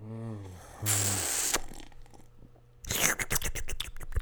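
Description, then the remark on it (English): A wet sipping of Dogfish Head Liquid Truth Serum IPA beer: a brief voice, then a loud airy slurp, a quiet pause, and a burst of crackly swallowing and mouth clicks right at the microphone. “Let me get another sip. ASMR.”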